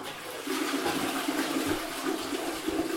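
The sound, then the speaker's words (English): A toilet flushes with a steady, rushing roar of water that starts abruptly and continues at a constant level, fairly loud, with no voices. “my toilet used to, when I flushed it, it would flush normally, and then about a minute after it flushed, it would make this kind of...”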